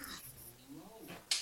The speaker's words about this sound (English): And your dogs, I think, approve of that. No, my dogs are complaining about the lack of meat on my pizza.